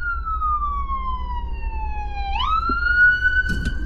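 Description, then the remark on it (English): The siren of an ambulance with a blue light, coming from the direction ahead, wails loudly, its tone sliding slowly down then sweeping back up, over a low rumble of traffic. “No, it's an ambulance.”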